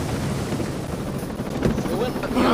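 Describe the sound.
A steady, loud helicopter rotor roar in a video game, as the helicopter goes down, with a broad whooshing drone filling the whole stretch, intensifying slightly toward the end, where a faint voice briefly rises over the noise.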